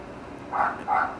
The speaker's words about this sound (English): And damn that fucking dog.